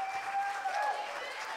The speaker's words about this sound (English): Then give God a great big hand clap of praise in the house.